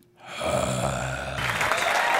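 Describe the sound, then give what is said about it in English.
A burst of crowd applause swells in quickly and holds steady, a dense wash of clapping hands that grows slightly brighter toward the end, loud with no talking. “Put your hands together, everyone. I've warmed up the crowd for you.”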